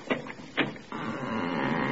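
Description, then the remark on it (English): The door of a basement apartment is worked open: two short knocking clunks, then a long, steady creaking groan from a door that needs oil, holding at an even loudness until the end, with no voices. “Well, wait, I'll open the door.”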